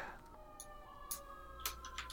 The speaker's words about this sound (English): Sirens. I was gonna say, is that siren coming through? Yes, the difficulty of living on a major thoroughfare is that every couple of minutes you're joined by local emergency management authorities.